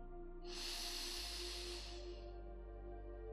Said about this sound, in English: Just breathing deeply into the base of your belly.